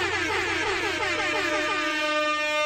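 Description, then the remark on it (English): A sustained, blaring air horn sound effect with a rich stack of harmonics and a slight wavering pitch, held steadily loud for nearly three seconds with no voices. “Oh wow, that was a punk ass air horn.”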